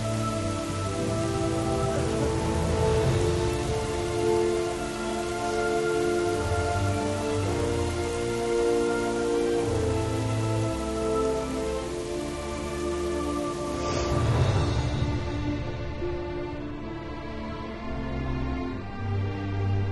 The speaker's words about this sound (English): Rain! Yay! This is exactly how I feel every time it rains.